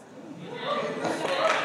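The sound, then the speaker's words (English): A church audience claps together after an announcement about its summer Ministry Training Institute, a dense patter of many hands that swells slightly over a couple of seconds, with a murmur of voices mixed underneath. “Wasn't expecting clapping on that.”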